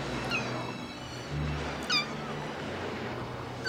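kitten meowing

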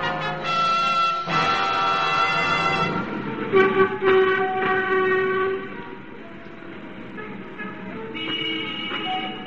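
subway train passing

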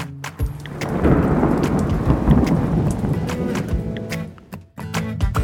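thunderstorm with rain

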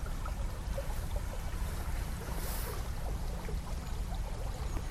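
river water flowing

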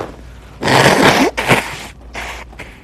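blowing nose

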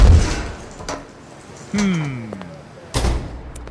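door being opened

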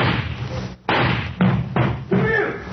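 banging on a door

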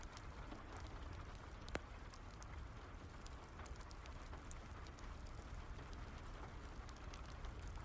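rain falling

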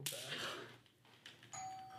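doorbell ringing

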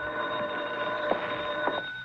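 telephone bell ringing

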